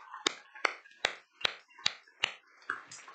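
Steady, evenly spaced hand claps, six sharp crisp strikes at a brisk regular beat, like a group clapping together in unison as applause, during a church service. No voices are heard.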